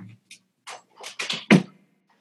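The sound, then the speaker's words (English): A person swings their door shut, with a few rustling, scraping movements leading up to one solid thump and a brief rattle as it latches, then quiet. “Sorry, I'm going to close my door real quick.”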